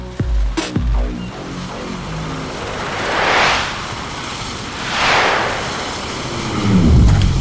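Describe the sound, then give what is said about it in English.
A low, chopping helicopter drone thrums while two loud, airy whooshes of a flying hoverboard surge past one after another. The engine rumble swells again at the end. No talking. “Hoverboard beats helicopter every time.”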